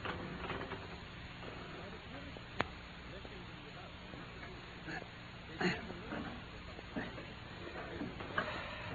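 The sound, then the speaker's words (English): Burglary tools working at a safe: sparse, irregular metallic clicks and brief scraping taps, fairly quiet, over a steady background hiss. “What about all those tools? Leave them to me.”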